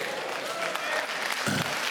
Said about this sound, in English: You're clapping about it, but is that the way I'm living my life?